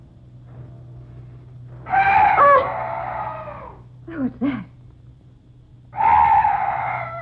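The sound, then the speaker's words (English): A weird night bird lets out two loud, drawn-out wailing cries a few seconds apart, with a startled voice speaking briefly between them over a low steady hum. “Oh, some night bird. Yes, that's all. Such a weird sound.”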